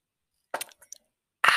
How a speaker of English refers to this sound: Hang on. I've got to sip some coffee.